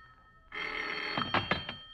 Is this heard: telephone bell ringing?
yes